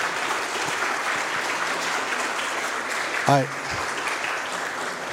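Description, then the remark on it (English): An audience at a gallery event applauds steadily for several seconds, a dense, even wash of clapping, with a brief voiced shout or cheer rising out of it about two-thirds of the way through. “Ladies and gentlemen, a huge round of applause”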